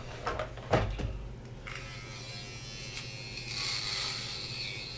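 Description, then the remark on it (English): An electric shaver hums steadily while it is handled and put away after shaving, with a sharp clunk early on and a thin whine rising toward the end. No one speaks. “So now put the shaver away.”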